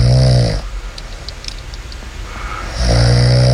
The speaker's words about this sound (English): Her husband, Matt, sent me an audio file of … snoring and we played it on the air yesterday.